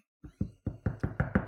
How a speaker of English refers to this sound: And you could knock the wall. And that started a whole flurry of activity.